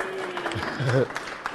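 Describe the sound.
A short round of applause, a patter of overlapping claps at moderate loudness, with a voice calling out briefly over it.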